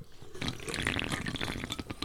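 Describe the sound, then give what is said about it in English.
A Joker-brand energy drink is poured steadily for about two seconds, a continuous splashing trickle with bubbly, fizzy crackles on top. No one speaks. “Hey, I'll cheers to that. Because all other energy drinks are a joke, drink Joker. Yeah, baby, I can hear that.”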